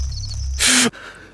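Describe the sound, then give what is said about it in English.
A single sharp, loud gasp for air as a person wakes with a start and sits straight up in bed, a breathy rush lasting a split second, cutting in over a low background hum and stopping abruptly. “I awoke with a start, sitting straight up in bed as I gasped for air.”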